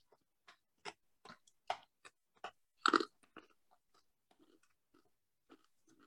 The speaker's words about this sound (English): Well, I gotta get some of these gone. We got them? You all right? I gotta chew them up.